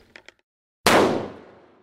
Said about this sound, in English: And so what that is obviously gunfire.